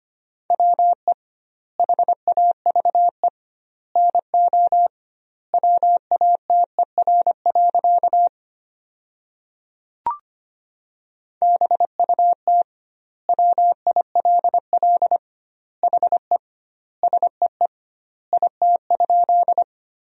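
Morse code sent at 25 words per minute, spelling sentences built from the top 100 words with doubled word spacing: a steady mid-pitched tone keyed in rapid dots and dashes, grouped into words with wide gaps, a brief click marking a pause midway.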